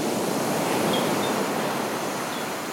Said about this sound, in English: or even when the animals are being quiet, you can hear the loud crashing waves onto the beaches of the Osa Peninsula.